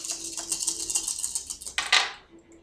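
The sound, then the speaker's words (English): Six dice rattle in a quick, dense flurry of small clicks, then clatter loudly onto a hard surface and settle. No one speaks. “So, roll 6 dice.”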